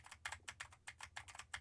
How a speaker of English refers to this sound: Now I am typing on a keyboard with Cherry MX Blues to see how much of my voice versus how much of the keyboard it picks up. And for you Lewitt gamers, now I am typing on the sad W keys.